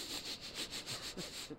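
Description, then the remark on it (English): A person imitates Hollywood film people sniffing around for a movie with a quick run of about seven short, breathy, hissy sniffs in a steady rhythm, fairly soft, with no speech. “That's my imitation of them sniffing around for a movie.”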